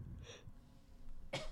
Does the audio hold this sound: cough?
yes